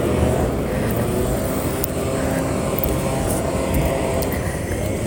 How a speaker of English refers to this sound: Oh, I can't wait for these leaf blowers to be banned forever.